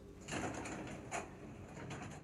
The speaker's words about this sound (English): The team turns to hear elevator doors open.